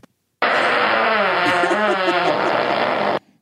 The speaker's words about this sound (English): These girls can fart with the best of them.